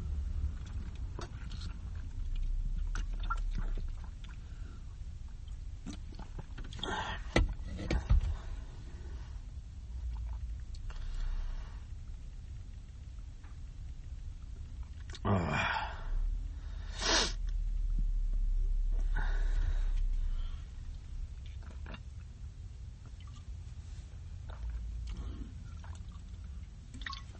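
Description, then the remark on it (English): Someone gulps down a can of Twisted Tea hard iced tea in a long stretch of swallowing, broken by a few sharp breathy bursts and exhales, over a steady low rumble with no talking. “Let's go ahead and finish off this Twisted Tea.”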